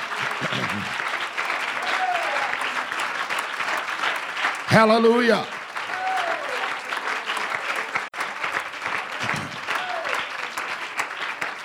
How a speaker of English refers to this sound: And the church shouted, amen. Amen. Give the Lord another real good hand clap of praise.